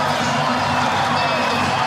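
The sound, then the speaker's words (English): A large stadium crowd roars in a steady, dense wash of cheering and shouting as the Warriors of Auckland win and eliminate the Newcastle Knights, loud and sustained throughout with no single voice standing out. “If you don't know, or if you don't think a crowd can make a difference, you haven't been in an atmosphere like this.”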